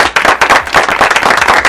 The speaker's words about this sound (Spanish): Penúltima, y felicitamos a Denise Quiñones. Uh-huh. Y un fuerte aplauso a Denise